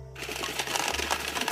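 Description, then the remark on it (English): An electric card shuffler, just won as a prize, runs with a steady mechanical whir and rapid, fluttering clicks of cards riffling, a low motor hum underneath, continuous for the whole moment with no voices. “Oh, it's a card shuffler.”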